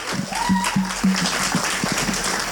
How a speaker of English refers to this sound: The psalmist says, clap your hands, all you people. Shout to God with a jubilant cry, for Yahweh, the Most High, is awe-inspiring, a great king over all the earth. We can clap in church. Let's practice it. Come on!